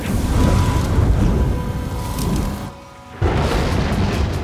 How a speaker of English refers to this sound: Before Nezahualcoyot could ask why she was there, thunder crashed from the clouds above. A blade of white lightning cut through the rain and struck deep into the king's chest.